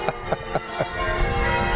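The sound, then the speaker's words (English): Church bells in the bell tower of Hughenden Church ring in a quick run of four evenly spaced strikes, their bright overlapping tones swelling into a sustained, resonant wash of ringing with no voices present. “In the bell tower.”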